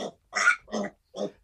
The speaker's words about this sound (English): I hear some pigs back there. I was going to say, one of my kids just came in the house, and I think they got their pig out of the cage and let him come in.